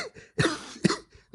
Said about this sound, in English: It's between, as I'm dying of some sort of CP cough, that I'm not sure what's happening. Just don't die. The CP is okay, but don't die. Yeah, well, it's the revenge of the CP cough.